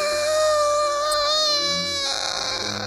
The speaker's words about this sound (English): Scream like a school kid.